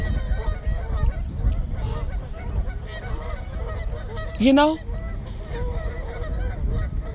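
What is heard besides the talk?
ducks honking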